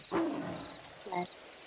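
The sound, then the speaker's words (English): A tiger growls twice in short, throaty bursts, the first louder and the second a moment later, against a faint steady background hum. “Growls back.”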